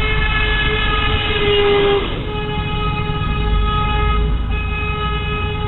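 A loud, sustained trolley horn blares with steady harmonic tones, shifting pitch slightly about two seconds in, then holding on continuously. No one speaks.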